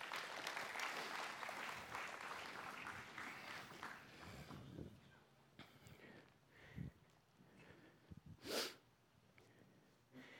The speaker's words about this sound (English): Give them a hand clap this morning. Amen.